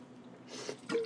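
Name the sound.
taking a drink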